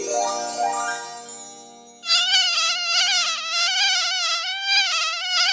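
A descending tonal sweep gives way to a loud, high-pitched mosquito whine that drones steadily with a wavering pitch for several seconds, with no talking.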